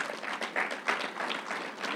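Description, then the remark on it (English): An audience at a Bible sermon claps steadily for a couple of seconds for a woman who has come up front, many hands blending into a dense, continuous wash of applause at moderate volume, with no voices standing out. “She want to take, come on, give her a hand clap.”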